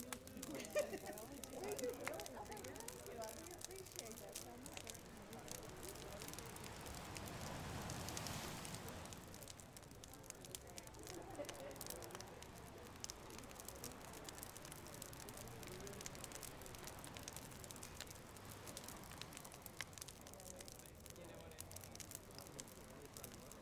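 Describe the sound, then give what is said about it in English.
A big bonfire on a beach crackles steadily throughout, with dense, irregular pops and snaps over a soft continuous hiss, swelling briefly louder partway through before settling back to an even crackle. “I'm sitting in front of a big fire on the beach, listening to the flames crackle and the waves crashing.”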